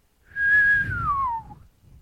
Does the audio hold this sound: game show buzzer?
no